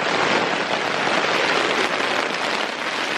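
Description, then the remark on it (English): Steady, loud rushing noise of strong wind battering tent fabric and pushing the tent inward on a sunny morning around 10 o'clock while camping, a dense hiss with no pauses and no voices over it. “The tent is just coming in on me. The wind is so bad.”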